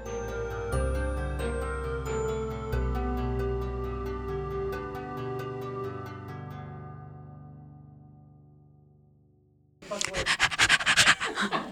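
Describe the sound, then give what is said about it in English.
A fading musical passage gives way to loud, rhythmic panting of a dog mixed with rough scratching noises, a couple of seconds of quick, breathy bursts near the end. “Who let the dog in?”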